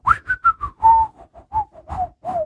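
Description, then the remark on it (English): Someone whistles the short, jaunty cartoon tune Mickey Mouse whistles on his steamboat in the Disney clip: about ten quick notes, clear, with a few held tones and a bouncy rhythm, and no talking over it. “And he's whistling the little da-da-da-da-da-da-da-da.”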